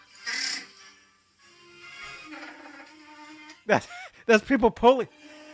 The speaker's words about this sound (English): That's people pushing like Coke cans and like sliding drawers. See, it's a guy pulling a drawer, and it sounds like Chewbacca.